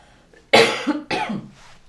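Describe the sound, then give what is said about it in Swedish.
Two forceful coughs in quick succession, loud, with a brief breathy tail after the second one and no talking. “Nu måste jag hosta igen, ursäkta.”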